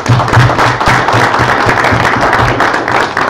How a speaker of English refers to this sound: I think everybody in this room has been beneficiaries of their hospitality and of their energy, and how about we give a round of applause for those guys.